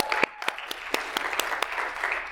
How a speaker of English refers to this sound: Let's give them another round of applause.